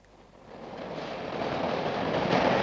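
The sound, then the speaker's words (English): A subway train on an old-fashioned line built 60 years ago, with modernized cars, running underground or elevated, rumbles along the rails, its broad roar growing steadily louder over a few seconds, a continuous rushing hiss with no voices. “This is nice, this subway. It's underground or elevated as the mood takes it, old-fashioned, though the cars have been modernized.”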